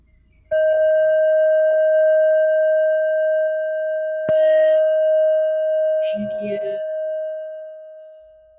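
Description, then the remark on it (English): A meditation bell is struck, giving a steady, pure ringing tone that sustains for several seconds; a second strike follows midway, and the ring slowly fades with faint murmurs near the end. “maybe you can ring the bell.”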